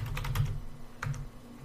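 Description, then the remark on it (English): A quick burst of computer keyboard keystrokes, pressing Control R to run the Letterworks game in an old Windows application, then a short pause and a couple more taps, fairly quiet over a low steady hum. “So I'm going to hit Control R and you can see the game.”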